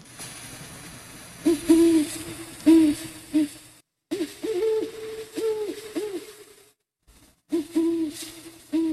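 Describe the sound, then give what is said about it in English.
Two great horned owls hooting back and forth, recorded at a cabin: deep soft hoots in short rhythmic bursts, the two birds' calls overlapping over a faint background hiss. “These two great horned owls, those are great horned owls.”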